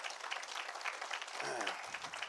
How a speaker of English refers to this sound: And I'm grateful for those who were willing to lay down their lives for this nation. Amen. Give them another hand clap if you will.